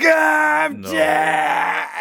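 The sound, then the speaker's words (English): A man, voicing the character Bob Chilius in a performed scene, lets out a loud, drawn-out cry of pain, straining and wavering in two long breaths with a brief break between them. “And the very last thing that happens is you hear from behind you, Tarkus, just behind you, Bob Chilius scream in pain.”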